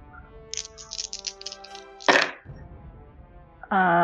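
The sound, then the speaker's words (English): Three six-sided dice (3d6) are rolled for damage: they rattle in a quick run of bright, light clicks, then land with a single sharper clatter. A short quiet gap follows before a voice starts speaking at the end. “And since that does not require any kind of save, go ahead and just roll for the damage.”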